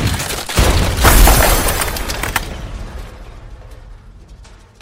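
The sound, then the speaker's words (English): A loud crash with a heavy boom as a wooden carriage, flipped upside down, comes crashing back down. It is followed by a rumbling, splintering clatter of wood and debris that gradually fades, ending with one last sharp knock. “Before the grim reality of the carriage comes crashing back down onto you.”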